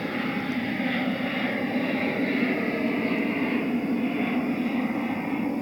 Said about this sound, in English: Let this plane go by. Airplane. I don't think they'll be able to hear it anyways.